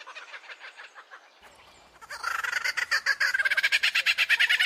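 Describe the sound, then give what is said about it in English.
An Australian superb lyrebird mimics other birds' calls, loud: a rapid, rhythmic run of bubbling, cackling notes that grows louder and faster, with no voices. “What you are hearing now is not the kookaburra. It is the superb lyrebird, also of Australia, renowned for its elaborate tail and courtship displays and its uncanny mimicry.”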